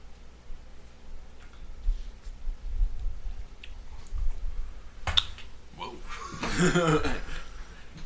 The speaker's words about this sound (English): All right, I'm taking a sip.